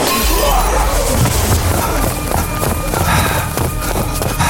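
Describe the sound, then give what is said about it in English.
A glass window is broken in a loud burst of shattering, followed by a dense clatter of breaking and falling shards over a low rumble, continuous for several seconds with no one speaking. “Quick, out this window! I'll hold them off! You break that glass!”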